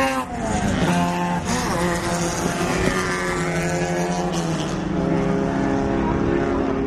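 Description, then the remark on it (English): Several classic sports cars, a Lotus 23, an Elva and an MGB, roar past one after another, their loud engines rising and falling in pitch as they accelerate, with no gaps between the passing cars. “Classic car, thing of beauty. Followed by the Elva, followed by an MGB.”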